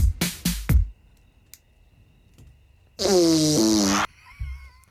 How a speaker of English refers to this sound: Fart noise. Did you not see the parentheses?